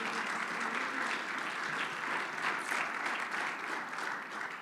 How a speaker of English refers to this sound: Clap your hands unto the Lord if you believe that today.